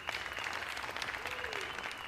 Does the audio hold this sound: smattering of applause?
yes